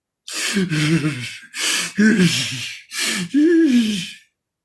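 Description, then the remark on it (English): Three loud, heavy panting breaths from the character Crazy, in close succession, each a harsh rush of air that turns into a strained, voiced groan, with no talking. “Honestly, and give this some thought, y'all, the breathing that Crazy is doing is the same type of breathing that Walt was doing when he was doing Channel 218 on Skyler the night before.”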